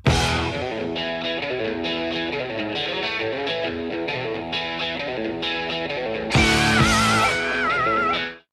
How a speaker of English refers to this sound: just so I can play the opening riff from … so people can hear it